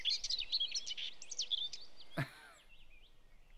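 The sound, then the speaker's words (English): A pet bird named Tweety chirps and twitters rapidly, a busy run of high tweets broken by a sharp click, followed by softer, sparser chirps. “Listen, Tweety, I understand why you like Cellar of Songbirds. Really, I get it. You're a bird.”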